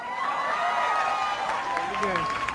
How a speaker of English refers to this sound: Listen to the crowd on that tape. They applauded when she omitted the right to life. With the right to liberty and the pursuit of happiness.